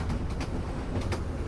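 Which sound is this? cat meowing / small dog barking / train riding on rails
train riding on rails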